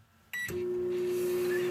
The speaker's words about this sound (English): The circus peanut in the microwave.